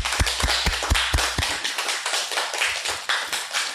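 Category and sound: crowd, audience round of applause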